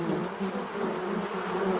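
A steady, droning buzz of bees fills the whole stretch, a dense swarm-like hum that holds at an even, fairly loud level with no voices or other sounds.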